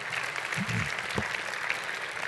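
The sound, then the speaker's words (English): An audience claps together as a clap offering to the Lord, a steady, dense wash of applause that holds at an even level throughout, with a few low murmurs and shuffling sounds beneath it. “Would you give the Lord a clap offering and stand on your feet?”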